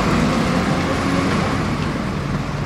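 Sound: traffic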